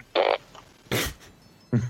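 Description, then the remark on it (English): Three short, raspy fart sound effects from a fart machine, the middle one noisier and hissier, the last one lower and buzzier, separated by brief pauses with no talking. “That's a fart.”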